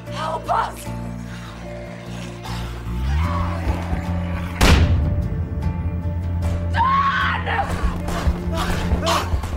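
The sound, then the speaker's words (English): A woman, the film character Alice, screams and yells frantically for Don to help as infected break in, over a loud, chaotic film soundtrack with droning music, crowd-like clamor and a sharp slam midway. “she stands on the window screaming as she's ultimately dragged”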